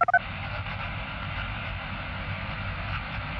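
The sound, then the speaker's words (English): A few quick electronic beeps at the start give way to steady, unbroken radio static and dead air on a phone patch, thin and muffled like it's coming through a phone line, with no voices. “But he was met with nothing but static and dead air from the other end.”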